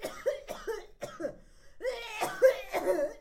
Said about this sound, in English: Cough.